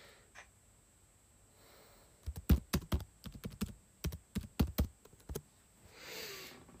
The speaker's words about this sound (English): You will hear me typing. I'm sorry, viewers at home.